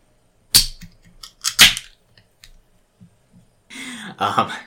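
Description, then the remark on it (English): A metal can of fizzy water snaps open with two sharp cracks, followed after a pause by a bright, hissing fizz of carbonation. “I can go open a fizzy water so that we can do that.”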